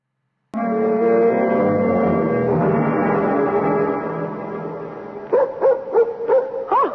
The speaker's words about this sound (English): Oh, it's just Ruth's dog. I'll chain him up in the barn.